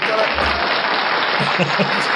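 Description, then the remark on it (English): An applause sound effect played to mark the winner of a quiz game: a burst of dense crowd applause, many hands clapping in a steady, even wash of sound that holds at the same loudness for the whole couple of seconds. “Where's the applause? Where's the applause? There it is.”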